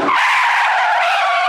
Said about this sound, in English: followed by the sounds of a car's wheels screeching to a stop.